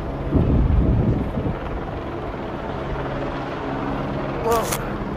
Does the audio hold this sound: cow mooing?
no